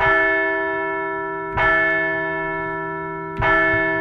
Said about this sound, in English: Let's ring the bell for the red hot fighting Phils.